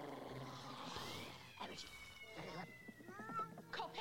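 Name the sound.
cat meowing and caterwauling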